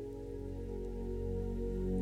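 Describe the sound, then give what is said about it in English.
Gentle ocean waves lapping in a soft, continuous watery wash that swells slightly louder, with a low, steady humming tone underneath and no voices. “You can hear the lapping of the gentle waves, sounding almost like the earth breathing.”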